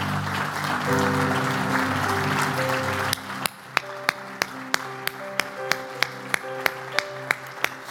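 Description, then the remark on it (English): An audience claps hands to thank God for His Word over sustained keyboard chords, first as a dense wash of applause, then falling into sharp, evenly spaced rhythmic claps in time with the music. “Would you clap your hands and thank God for His Word?”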